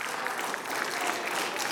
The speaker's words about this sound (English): Three people clap.